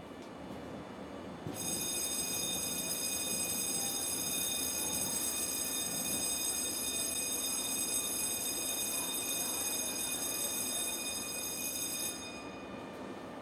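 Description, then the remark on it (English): Isabel's train runs along the rails with a steady, continuous rumble and a high, sustained metallic whine over it, lasting several seconds before fading away. No one speaks. “There's Isabel's train.”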